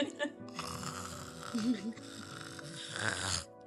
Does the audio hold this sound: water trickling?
no